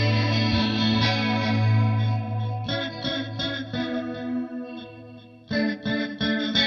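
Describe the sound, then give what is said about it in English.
An electric guitar plays sustained, shimmering chords through spring reverb and a digital delay with very few repeats, with a chorused, slightly distorted tone; a few strummed attacks stand out, loud, with no voices. “And then for the reverb, we're sticking with the spring.”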